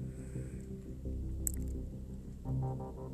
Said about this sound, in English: We're back, headed back from a long day. Putting on the ignition